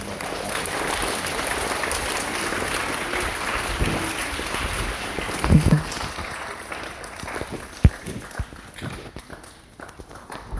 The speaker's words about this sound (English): Right? So why don't we give our family a round of applause.